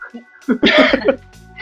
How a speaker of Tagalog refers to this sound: Parang, alam mo, natatakot ako pag umuubo ka.